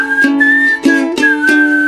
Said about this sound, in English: I'm in the mood for whistling, whistling along with you. Hey, hey, what do you say? I'm in the mood for that. Well, I said I was in the mood for whistling. I didn't say I was good at it, but that wasn't too bad, right?